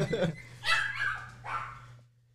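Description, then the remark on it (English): A dog lets out three or four sharp, high-pitched barks in quick succession over a steady low electrical hum before the sound drops away. “Oh, that dog. They have a personality to them, don't they?”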